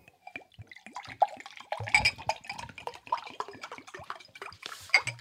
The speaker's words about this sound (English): All right, that water sounded nice.